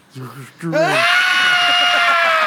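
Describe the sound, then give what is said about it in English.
A person lets out an imitation scream: a couple of quick vocal sounds, then a loud, shrill, sustained shriek held for nearly two seconds. “I'd love to see you scream like that.”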